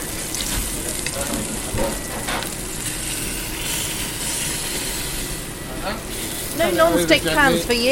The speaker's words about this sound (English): So it's protecting the fish. Two jobs. It's frying there gently on one side. We're going to turn it over.